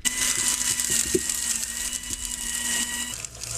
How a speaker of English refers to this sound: That sounded like a pencil sharpener. Well, it was close. It was a paper shredder.